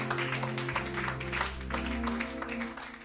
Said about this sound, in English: Clap your hands and bless the name of Jesus.